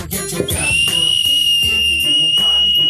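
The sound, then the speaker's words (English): A high, steady whistle tone from a 3D-printed whistle, the first of three, starts about half a second in and holds continuously to the end, fairly loud over a busy low background. “You didn't know you could 3D print whistles, huh?”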